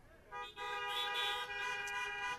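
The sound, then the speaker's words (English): Car horns blare together in sustained, overlapping blasts, starting after a brief pause and holding loud and steady with only short dips until the end. “Now that sounds good, and the honking sounds amazing”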